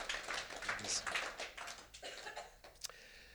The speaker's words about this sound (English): So, as he takes a seat, will you give a big round of applause and thank him for the fine species of a brain that he is on top?